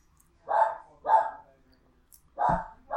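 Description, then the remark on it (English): A dog barks three times, two quick barks close together followed by a pause and then a third, loud with no other sounds around them. “Oh, just barking.”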